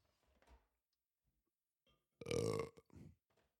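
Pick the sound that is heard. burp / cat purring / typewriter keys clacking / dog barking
burp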